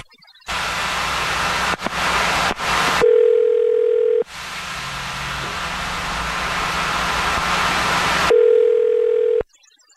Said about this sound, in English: I'm going to dial the phone number right now.